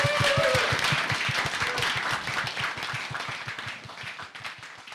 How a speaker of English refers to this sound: So can we please give our special guest a very large round of applause?